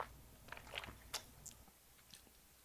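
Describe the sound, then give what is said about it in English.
Someone takes quiet sips of a fizzy grapefruit alcoholic drink with 4% alcohol, a handful of soft wet slurps and mouth clicks scattered over a couple of seconds, with no talking. “Sips.”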